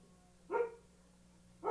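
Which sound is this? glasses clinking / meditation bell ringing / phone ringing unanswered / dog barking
dog barking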